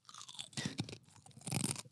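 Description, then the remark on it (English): Crunchy chewing of a grasshopper, with repeated crisp, crackling bites in two bursts, bright and brittle, with no talking over it. “Let's hear that crunchy. Give them some ASMR.”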